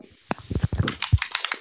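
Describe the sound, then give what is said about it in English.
Rapid, irregular clicking of keys on a computer keyboard as someone types in a chat app, a quick burst of typing with no voices. “You know how it says you're typing in the Discord and all I hear is... like, can you not?”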